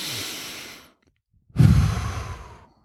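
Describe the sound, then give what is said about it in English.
A slow, deep breath drawn in through the nose during meditation, a brief pause, then a long, audible exhale like a sigh, with no talking. “It could be just you sitting there, taking a deep breath in the morning, focusing on your breath, breathing in through your nose, letting your belly rise, breathing out.”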